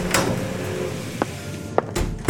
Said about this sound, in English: The door creaks open.